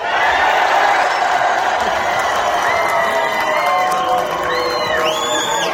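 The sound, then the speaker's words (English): A huge arena crowd of fans at a fight event in New York City roars and cheers continuously, a loud sustained wall of voices with scattered whoops and high-pitched shouts rising above it toward the end. “These fans are hyped and they're ready to be entertained.”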